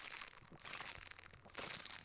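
Someone takes a quick swig of water, with a couple of wet, crinkly bursts of gulping and plastic bottle crackle, fairly loud with no talking.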